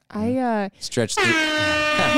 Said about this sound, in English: Travis found the air horn button. That was made for it.